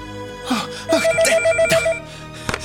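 A telephone rings with a rapid, warbling electronic trill, pulsing in quick repeated bursts for about a second, fairly loud, amid some background rustle and a brief gasp-like sound.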